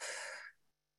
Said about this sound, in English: Breathing in again.